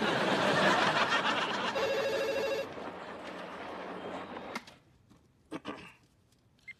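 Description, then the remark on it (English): A telephone rings in a short, steady electronic trill over a loud, roaring crowd-like din, which then drops away, leaving a few brief sharp sounds in near quiet. “Thank God you answered.”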